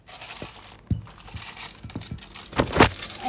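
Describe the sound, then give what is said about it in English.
Crisp crinkling and rustling of paper being pressed and shifted into a loaf tin lightly misted with water, with irregular soft thumps and scrapes, loudest toward the end; no one speaks. “And then we put our paper into the loaf tin.”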